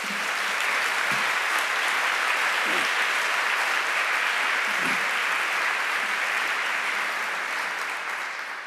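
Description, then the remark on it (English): A crowd at an HDS convocation welcoming incoming students claps steadily for about nine seconds, applauding the program's participants: a dense, even wash of many hands at a strong, constant level that tapers slightly at the very end. No one speaks over it. “How about a round of applause for all of these people?”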